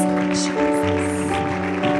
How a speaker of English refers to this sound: Why don't we give God that hand clap of praise?